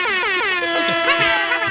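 A voice imitates a blaring horn, holding one loud, buzzy tone for under two seconds with a slight waver in pitch and no pause.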